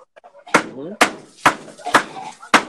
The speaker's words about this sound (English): Oh, this place I am is very noisy. Can you hear that sound? Yes, of course I can hear that sound. It sounds like two pieces of wood slapping together. Yeah. What are you doing, trying to beat out a rug or something?